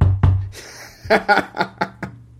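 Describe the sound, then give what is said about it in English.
A couple of dull thumps, then a quick run of about five sharp, evenly spaced knocks on a door, fairly loud, with no talking. “He comes a knock at the door.”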